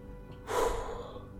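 A single heavy, breathy exhale from a person standing still, a short rush of air that rises quickly and trails off, with no talking around it.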